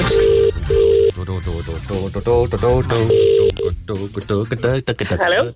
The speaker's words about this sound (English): I could be calling you back on the radio. Oh, it's ringing. That's sort of a ringing noise.